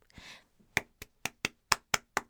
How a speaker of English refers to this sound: I have to give Persephone a round of applause.